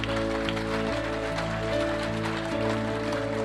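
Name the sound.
audience applause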